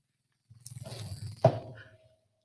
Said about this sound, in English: It doesn't make any like a weird sound. It's the average buzzing of a vibration, but it is very loud.